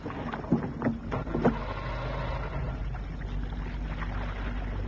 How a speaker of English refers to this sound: Hey, it's 11 and I have to pilot this boat back to harbor. Aye, aye, skipper. I'll start the outboard motor.